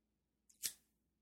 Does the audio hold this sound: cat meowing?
no